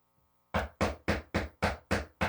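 Seven loud, rapid knocks on wood in a steady, even rhythm, following a brief moment of near silence, with no voices.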